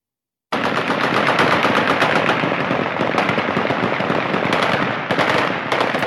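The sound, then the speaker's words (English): Dense, continuous bursts of automatic gunfire crackle without pause, many rapid shots overlapping, loud and sustained, as the Taliban celebrate with gunfire in Afghanistan at about 5:30 in the morning on August 31, after the United States has left. “The Taliban knows the United States is gone and is celebrating with gunfire.”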